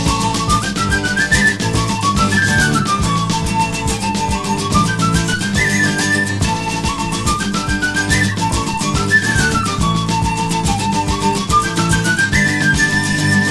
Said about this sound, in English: Later on in the breakdown, I do believe that iconic part is played on a penny whistle. You do think that's a penny whistle? Okay. Oh, yeah. It's not a flute.